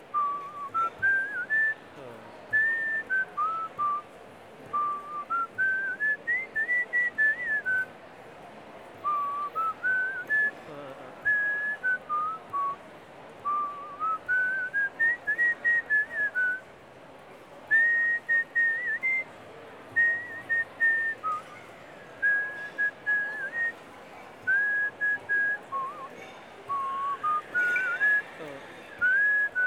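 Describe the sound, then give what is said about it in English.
A person whistles a wavering melody in repeated rising and falling phrases, clear, continuing steadily for about half a minute over a faint background hiss. “So instead of a saxophonist, we're going to hear whistling.”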